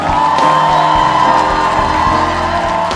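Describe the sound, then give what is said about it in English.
A large church audience at First Love Church London claps and cheers loudly and continuously, giving Jesus a loud hand clap, with whoops and shouts rising over a dense wash of applause that fills the whole three seconds. “Give Jesus a loud hand clap.”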